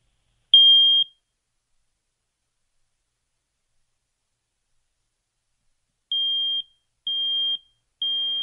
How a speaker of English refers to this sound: All right, so I'm going to press the test button on a smoke alarm for you right now, and you'll notice that it's three beeps, okay?